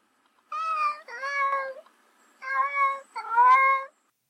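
A cat meows in two close pairs of drawn-out, tonal cries separated by a short pause, clear, with no one talking.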